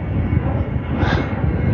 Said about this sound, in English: It's really cloudy, so I can't even see which direction this plane that's chasing above me and following me is, but I know it's like right the fuck above me.